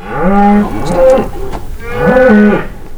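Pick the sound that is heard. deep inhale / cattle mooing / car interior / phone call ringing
cattle mooing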